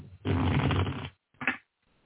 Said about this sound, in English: I want to shuffle really, really good.